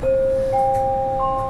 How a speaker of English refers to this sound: Oh, is this a train? Damn, almost missed it.